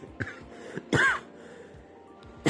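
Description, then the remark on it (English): A few throat-clearing sounds and a short, harsh cough, loud bursts separated by brief quiet gaps, with no speech. “we're going to have a lot of errors and a lot of coughing.”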